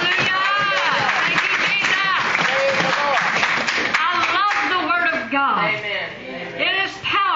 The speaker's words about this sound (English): Let's give God a clap offering for the written Word.